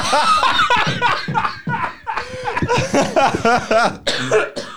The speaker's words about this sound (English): I've still got the cough. I've still got the cough, so expect that to happen.